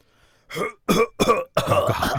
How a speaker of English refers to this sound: Cough, cough.